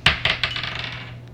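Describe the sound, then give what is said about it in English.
A die, rolled for a DC 16 strength save in a tabletop role-playing game, clatters down with three sharp, bright clicks in quick succession as it bounces off a beer glass, then a short rattling patter as it skitters and settles. A low steady hum runs underneath, with no voices. “It bounced off the beer glass.”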